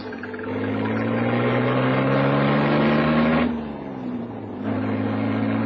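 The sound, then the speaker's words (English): A car engine hums steadily and loudly, easing briefly as if shifting gear, then picking up again as the car pulls away. No one speaks. “You picked the right car. Hop in.”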